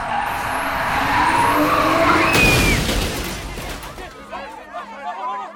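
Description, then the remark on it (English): A Chevrolet's tires screech in a sustained, high skid over rumbling engine noise as it flies onto a walkway, then a loud burst like an impact as it hits a pedestrian and crashes into a wall, before a voice starts talking. “The Chevrolet flew over on the walkway and hit me full force before crashing into the wall right behind me.”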